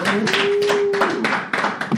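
An audience applauds steadily for a speaker who has just finished, a dense crackle of many hands clapping at once, with a faint sustained tone running beneath the clapping partway through.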